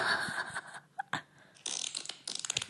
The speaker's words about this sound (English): I recorded some audio of a fart I had today.